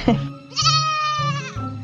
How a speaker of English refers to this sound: If you know anything about goats, you're going to know that they're very silly. They're very mischievous, and they'll talk very loudly to anyone who will listen.